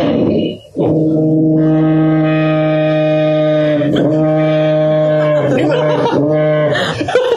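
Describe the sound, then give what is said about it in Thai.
A toadfish call: a loud, low, buzzing drone like a foghorn, rich in harmonics, holding steady for several seconds with a few brief dips and restarts. “อันนี้เป็นเสียงปลาเนี่ย”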